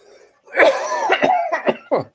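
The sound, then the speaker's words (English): A loud burst of coughing, several rough coughs in quick succession with a throat-clearing quality, then a short final cough after a brief pause. “Cough, cough, cough.”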